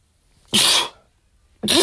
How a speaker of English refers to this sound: Excuse me, I rarely sneeze on the podcast. Excuse me, babies.